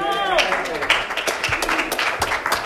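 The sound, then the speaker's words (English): An audience gives God a hand clap at an evening church service, clapping in a dense, continuous burst of applause, with voices calling out over it and a loud rising cry at the very start. “Let's give God a hand clap tonight.”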